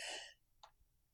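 A single sharp sneeze bursts out at the start, breathy and forceful, followed by a brief soft exhale or sniff and then near silence.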